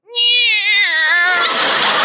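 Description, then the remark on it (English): A single long, loud cat meow with a wavering pitch that turns rough and breathy toward the end, heard on its own without any talking. “Listen, Minerva. Hi, Minerva. Meow.”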